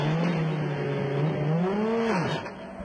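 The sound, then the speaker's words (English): Ewan Hanke's Aston Martin race car engine hums at a steady idle as it is started to rejoin the race, revs up and sags back down, then stalls and drops noticeably quieter near the end. It is loud, with no voices. “He got it fired back into life very quickly, but that was at least 2 seconds cost delay.”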